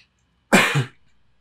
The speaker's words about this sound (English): I clear my throat 200 times before I start, and then I get I don't know. I mean, professional broadcasters probably got a term for that.